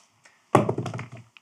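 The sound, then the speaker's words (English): A pair of dice, rolled for a spin attack in a game, lands on a table with a hard thunk and a short rattling clatter as they tumble, followed by two small clicks as they settle on double twos. No one speaks. “So for your spin attack, roll two dice.”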